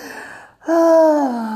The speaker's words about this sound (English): I'm just breathing.